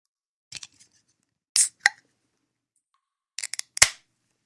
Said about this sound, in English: Let's open another beer for that.